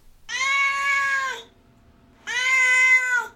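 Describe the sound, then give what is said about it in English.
A pet cat named Duarte meows twice, each call long and drawn out with a strong harmonic tone, separated by a short pause; fairly loud, with no talking. “Now it is, of course, time for Duarte's Corner, where my cat Duarte will weigh in with his thoughts about the book.”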